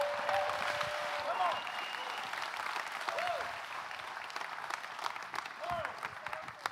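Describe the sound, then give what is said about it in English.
A large audience claps steadily and loudly for the Lord for several seconds, with whoops and shouts rising out of the dense applause throughout. “Give the Lord a clap and a shout.”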